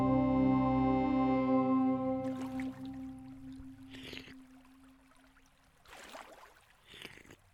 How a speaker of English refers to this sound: If there's water here, does that mean we're close? No. This stream does not come from an entrance that we can walk through.